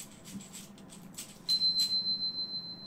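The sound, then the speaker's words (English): A bright bell chime used as a transition effect: shimmering, airy bursts give way to a single high, clear tone that rings on steadily to the end, with no voices. “How's it an Indian bell chime? It's just a bell chime.”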